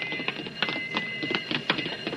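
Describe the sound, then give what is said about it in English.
An alarm bell rings steadily, a sustained metallic jangle with a fast rattling clatter and sharper strikes pulsing through it at a quick, uneven rhythm. No one speaks. “There's an alarm.”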